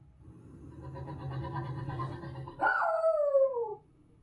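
A dog lets out a low, rumbling growl-like vocalization that breaks into a single loud, drawn-out howling bark sliding downward in pitch, with no one talking.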